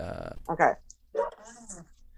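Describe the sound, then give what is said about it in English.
Dogs wanting water let out a short bark followed by a longer, drawn-out whimpering whine, two bursts of sound at moderate loudness with a brief pause between them. “I was just pausing for a second because I was just going to give you if the dogs had anything else to say. They wanted water.”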